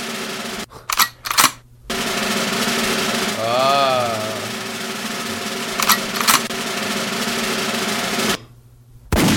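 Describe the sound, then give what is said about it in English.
A person blows a single loud, buzzy mouth fart imitation lasting about a second, its pitch wobbling up and down, with a brief spoken word and some clicks around it. “Can you do the fart thing just once?”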